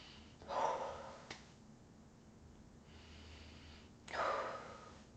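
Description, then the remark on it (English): Two deep, airy breaths, one around the start and another near the end, each a broad whooshing inhale or exhale against quiet background, with no talking. “And guess what? Breathe. We breathing. You breathing.”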